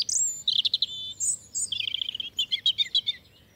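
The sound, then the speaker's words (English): A European robin sings a varied, warbling phrase of high, thin notes and rapid trills, clear with no talking, over a faint low background hum. “On at least two occasions, the robin redbreast has won the popular vote to become the UK's unofficial national bird.”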